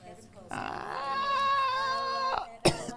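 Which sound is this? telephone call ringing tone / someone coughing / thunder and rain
someone coughing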